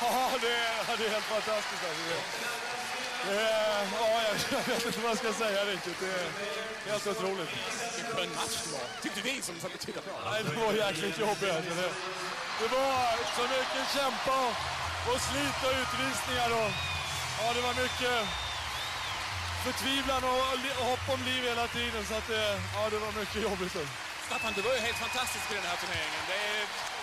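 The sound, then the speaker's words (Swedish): A euphoric crowd at the Globen arena celebrates together with its heroes after a final, a loud, continuous roar of many voices cheering and chanting, with a low rhythmic thumping joining in partway through. “Ett euforiskt Globen firar tillsammans med sina hjältar.”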